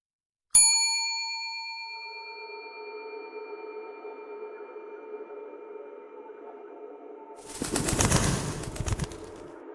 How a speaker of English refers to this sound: Before I can stop her, the manager's rung the bell, and it shines through my bones. Settling behind my eyes, the lobby boy throws open the door before its mock tintinnabulation can dissolve fully.